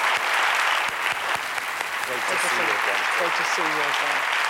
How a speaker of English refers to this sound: Please come on out, John. Round of applause, John Walsh.